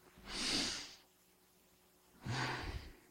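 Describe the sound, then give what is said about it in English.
A voice imitates a deep breath: a long, airy inhale, a pause of about a second, then a breathy exhale with a faint voiced edge, moderately loud with no talking. “About 2 minutes before that, he took a deep breath.”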